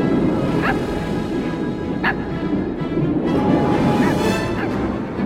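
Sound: small dog barking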